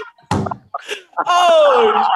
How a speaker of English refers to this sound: Oh! That's a coat on the door.